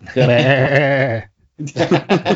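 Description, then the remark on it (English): A man's voice lets out a long, loud, wavering goat-like bleat for about a second, a Goat Boy imitation and callback to Jim Brewer, then a brief pause before he starts talking. “Goat Boy is ready.”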